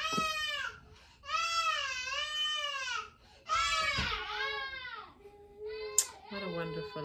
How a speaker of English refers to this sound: Child crying. Wonderful.